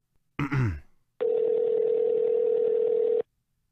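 A brief throaty vocal noise, then a single steady electronic ring tone from an outgoing phone call, holding for about two seconds at a fairly loud level before cutting off.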